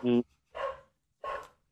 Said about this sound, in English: Sorry, the dog's going mental there because the postie's has come.